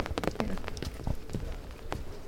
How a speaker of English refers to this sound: Light rain. You can hear it.